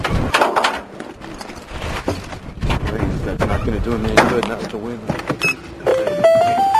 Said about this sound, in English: Did you want to drive somewhere? Well, let's get in the car here. All right.